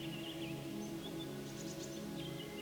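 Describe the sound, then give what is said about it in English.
Faint birdsong: a scattering of short, high chirps and trills over a steady low hum, with no voices. “I hear birds singing songs.”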